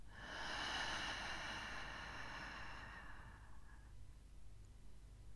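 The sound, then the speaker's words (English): A long, deep exhale through the mouth during a breathing exercise, breathy, lasting a few seconds before trailing off into a quiet background hum. No one speaks. “In through the nose and out through the mouth.”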